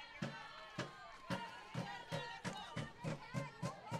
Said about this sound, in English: I toyed with the idea of adding the crowd mic, but I really love it. I think it gives a lot of ambiance to the broadcast, and you guys don't have to listen to silence if I'm not talking.